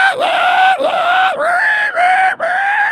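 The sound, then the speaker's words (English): A human voice imitates a pig's squealing scream: a loud, high-pitched, nearly continuous squeal broken into about five shrill bursts, each dipping and sliding back up. “They have squealing fits. They're like, they scream.”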